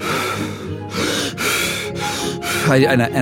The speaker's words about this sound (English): So I go back into the breathing method, and I just...